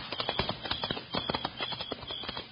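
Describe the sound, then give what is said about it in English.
Steady clip-clop of a horse's hooves on a hard surface as the horse is ridden away toward Salt River, a brisk repeating rhythm of sharp knocks at moderate loudness with no voices. “Okay, I'm on my way. Quiet, mate. Come on, horse.”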